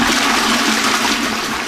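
A toilet flushes in one loud, steady rush of water that roars through the whole clip, with a low tonal hum running beneath it and no voices.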